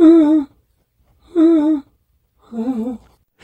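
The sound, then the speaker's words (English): Odd sleep noises, somewhere between snoring and sleep-talking: three wavering, moan-like voiced groans without words, each about half a second long, separated by short pauses, the last one slightly softer. “your girlfriend Sarah recorded you making some weird noises while you were sleeping”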